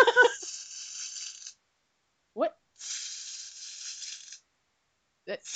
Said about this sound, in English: Let me ask you all, in your opinion, what do you think tinsel sounds like? Does it have a sound? Well, …, we're about to find out.